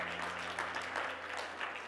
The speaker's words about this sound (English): Let's give the Lord a hand clap of praise as you're being seated.